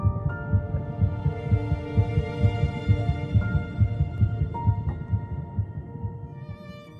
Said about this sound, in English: At 3 weeks and 1 day, just 22 days after fertilization, Olivia's heartbeat can be detected.